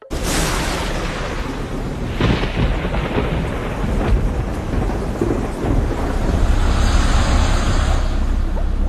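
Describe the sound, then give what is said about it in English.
Steady, heavy rain pours down while deep thunder rumbles and rolls through, with a few sharper cracks standing out, loud, and no voices present. “There was rain at last.”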